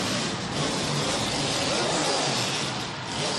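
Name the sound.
racing car engine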